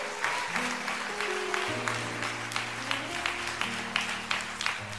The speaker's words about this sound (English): Would you give the Lord a great hand clap for Pastor Nelson?